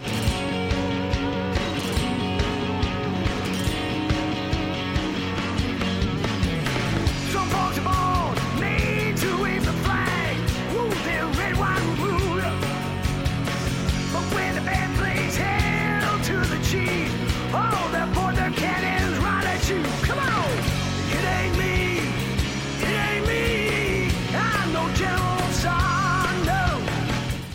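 A rock band plays a cover song: loud, driving drums and dense distorted guitars under a strained, shouting lead vocal, holding a steady, energetic level throughout.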